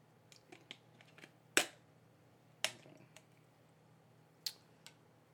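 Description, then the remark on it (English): The plastic cap of a Tropicana no-pulp orange juice bottle is twisted open, giving a few sharp cracking snaps scattered among faint small clicks and ticks, with no one talking. “Let me get this orange juice. No pulp. We don't like pulp. We don't do pulp over here. Tropicana. Let me get this open.”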